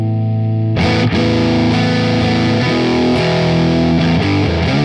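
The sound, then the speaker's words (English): A heavily overdriven electric guitar plays sustained distorted chords through an amplifier with the level around unity, drive at about 2 o'clock and presence turned down. It is loud and thick, with a dull, rolled-off top end and no voices. “Let me turn the presence down.”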